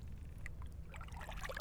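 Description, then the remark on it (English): A small boat rocks on a lake on a mild day, with soft water lapping and trickling against the hull over a steady low rumble of a breeze blowing across the water, fairly quiet. “Just chilling with me, the boat and the lake.”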